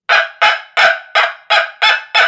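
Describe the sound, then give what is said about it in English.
A dog-bark sound-effect noisemaker built as a cranked instrument, played by turning the crank, imitates a small yappy dog with seven quick, evenly spaced bark-like yelps, bright and raspy, each starting sharply and fading. Loud, with no talking. “It's a little bit of a smaller dog sound, but I used it for kind of a yappy dog in the last show.”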